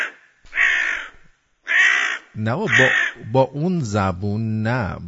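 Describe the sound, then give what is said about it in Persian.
A crow gives two loud, harsh caws from the top of a tree, each drawn out, and then a person starts talking right after them. “مرد سرگرم تماشای آنان بود که کلاغی از بالای درخت از او پرسید.”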